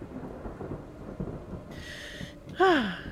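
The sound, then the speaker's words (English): Deep, rolling thunder rumbles and echoes steadily over a city, with a hiss like rain rising partway through and a brief, sharper descending tone near the end. No one speaks. “There is an echoing sound of thunder that rolls over the city, and the vision fades.”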